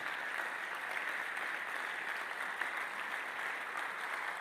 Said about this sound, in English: You are not clapping your hands well.